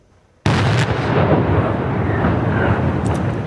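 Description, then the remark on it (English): After a brief hush, a controlled demolition explosion bringing down the two cooling towers of an old nuclear plant in southern Germany erupts in one sudden, loud blast, then rolls on as a heavy, continuous rumbling roar of collapse. No voices are heard. “The spectacular controlled explosion brought down the two cooling towers of an old nuclear plant in southern Germany.”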